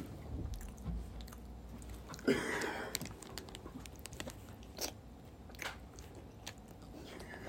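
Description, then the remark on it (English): Open-mouthed chewing right into the microphone, with wet smacking and crunchy bites at an irregular pace and a louder crunch partway through. No one speaks. “I never chew with my mouth open.”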